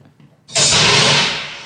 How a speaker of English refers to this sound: Oh, that's a door. On Cloud City. Specifically. No, it's a blast door. Blast door.